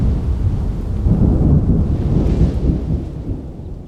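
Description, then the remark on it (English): A thunderstorm with wind, heard from inside tents, rumbles continuously with deep, loud thunder rolling over a steady wash of heavy rain, sustained throughout with no voices present. “The heavy rain, wind, thunder, and lightning were super loud inside the tents, but we were really tired, so we all fell asleep.”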